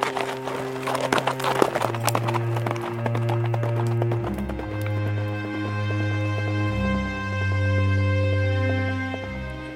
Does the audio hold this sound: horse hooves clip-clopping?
yes